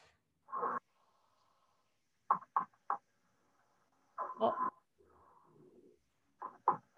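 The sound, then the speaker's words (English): A bear chomps its teeth together in a series of sharp, hollow clacks, coming in irregular clusters separated by quiet gaps, with a breathy huff partway through. “That's a knocking. So can you hear? They chomp their teeth together, right?”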